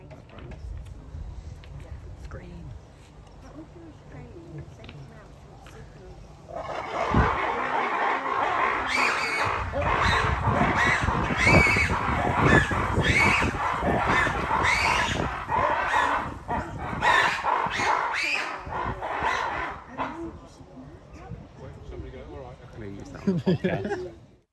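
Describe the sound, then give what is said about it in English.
A loud, chaotic chorus of lemurs shrieking and barking at each other erupts after a quieter start, overlapping continuously for about fifteen seconds before fading back down, with a few final cries near the end. “So please enjoy the sounds of lemurs shrieking at each other.”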